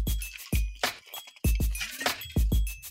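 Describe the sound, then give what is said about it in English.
A glass of water is handled and clinked several times, with sharp knocks and faint high ringing tones, plus soft handling noises between the taps as someone takes a sip. “I need a sip of water. Hang on.”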